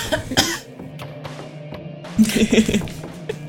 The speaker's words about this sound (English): That wasn't a cold, that was just the sarcastic cough.